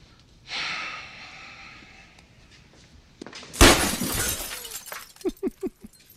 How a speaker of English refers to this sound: Just smashing the windshield of the car that he bought him just to force him to take the bus to his construction job.